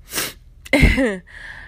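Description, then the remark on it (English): A sharp, breathy sniffle through the nose from someone crying while thanking God on their 34th birthday, then a brief shaky, voiced catch of breath like a tearful sob, followed by a faint lingering hiss. No one speaks. “Yes, that sniffle came from me crying, thanking God for another year.”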